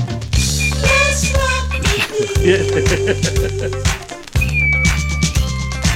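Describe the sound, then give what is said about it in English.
A voice mimics a shrill carnival whistle in a few bright, wavering tones, riding over a loud, steady electronic beat with booming bass that drops out briefly midway. “They need like one of those carnival whistles that's like.”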